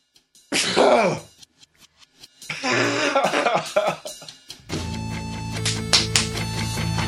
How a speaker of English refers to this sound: I just sneezed on the intro for you, so I hope you all enjoyed that. Is that what that was? Bless you. It was, yeah. My eyes are watered,